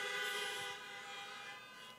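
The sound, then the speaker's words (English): Several car horns blare together in one long, sustained chorus of honking that holds steady for the whole moment, dipping only slightly in loudness partway through, with no voices. “Come on, everybody honk on that one.”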